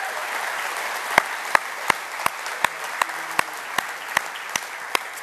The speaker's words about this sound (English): Our Ventura campus will be joining us for this sermon. Let's let them know that we love them. Big round of applause for them.